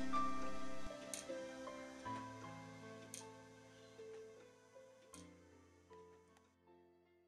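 A homemade mechanical clock ticks at a steady pace of about one tick per second, its crisp clicks sitting over a soft, sustained musical tone, with no one talking.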